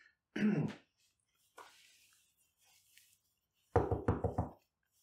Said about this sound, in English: Did you have to knock so loud? I do apologize